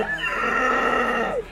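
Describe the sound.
A person loudly imitates a distressed cow having a lump hacked off it, a single strained, wavering moo held for over a second before it drops off, with nothing else around it.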